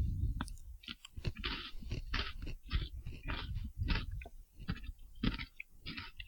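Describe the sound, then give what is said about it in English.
Loud crunching and chewing of a fresh chocolate-covered pretzel from Pennsylvania, with repeated sharp crackly bites in an irregular rhythm throughout, no talking. “There's like major crunching during this whole time.”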